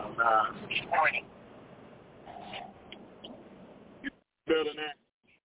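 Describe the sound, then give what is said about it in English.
A muffled, narrowband voice comes through a phone call in short bursts, thin and boxy with the high end cut off, with brief pauses and a sudden drop to silence near the end; the caller is on Apple headphones in a truck. “Yo, this shit is muffled and long.”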